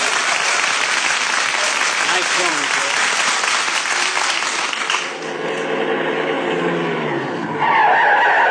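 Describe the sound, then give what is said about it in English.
A car skids with loud squealing brakes, a long rushing scrape followed by high, wavering screeches that bend in pitch, loud throughout. “Get them brakes fixed.”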